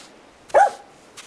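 dog barking

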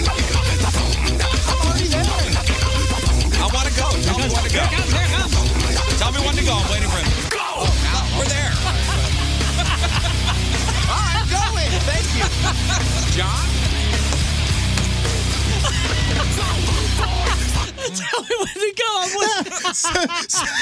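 song playing

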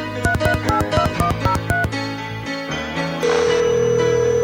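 telephone ringing

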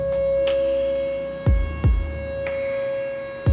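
air raid siren

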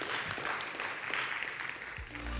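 audience applauding

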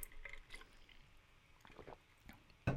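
drinking water

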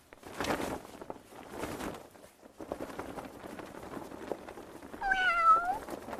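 many cats meowing

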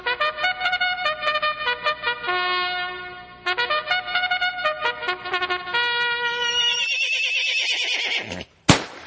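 horse neighing

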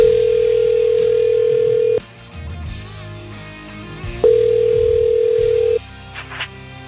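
telephone dialing and ringing

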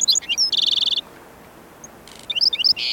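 black-throated sparrow singing

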